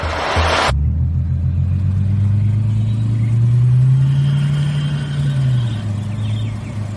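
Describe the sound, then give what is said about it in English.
A car engine rumbles loudly, its deep tone climbing as it revs midway, then settling back down. A short burst of noise comes right before it, and nobody speaks. The car is one being given away. “It'll be the fifth car that we're giving away from 4Bidden Knowledge.”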